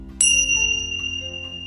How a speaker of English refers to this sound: Feel the healing, loving chi of vibes of the dragon tincture bells as they wash over you with healing love and light.